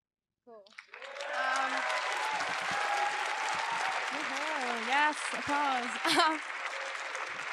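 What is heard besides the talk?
audience applause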